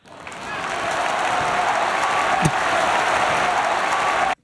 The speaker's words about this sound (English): That was a strong round of applause, that one. Yeah, that was... Well, that was the oppressed people that have been dying to say the R word for all these years.